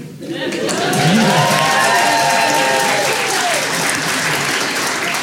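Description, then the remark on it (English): Loud, sustained applause from a large audience fills the whole stretch, dense and steady, with some voices and cheering rising through the clapping. “Doc answers wearing a large metal device on his head and holds for applause.”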